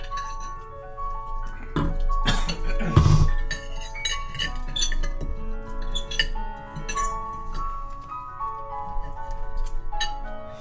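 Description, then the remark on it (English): Glasses clink together repeatedly in a toast, each bright chime leaving a sustained ringing tone. The taps come fairly loud, irregularly spaced over several seconds, with no voices. “Well, I already clinked your glass, so I guess I'm fucked.”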